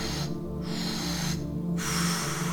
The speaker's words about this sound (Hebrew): אנחנו מכניסים 80% דרך הפה, מוספים 20 ומוציאים. מה שאנחנו הולכים לעשות זה 30 נשימות בכל סט.